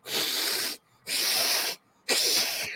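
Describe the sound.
A voice imitates a possum's hiss: three loud, breathy hisses, each lasting under a second, separated by brief silent pauses in an even rhythm, with no talking.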